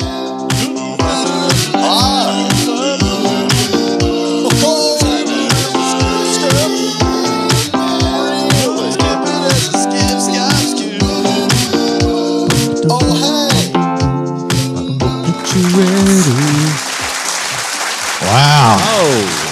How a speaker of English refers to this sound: Wow, this audience is getting wild in here. It's almost like a riot is about to start.